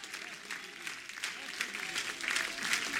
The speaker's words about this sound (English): Oh, if you want that, you ought to clap your hands and you ought to lift your voice right now. Come on.